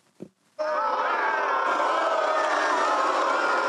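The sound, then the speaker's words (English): A brief low thump, then a large crowd abruptly bursts into sustained, loud cheering and shouting that holds steady with a dense roar of many voices. “You get all booze. Yeah. The crowd was entertained.”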